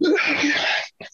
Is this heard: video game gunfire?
no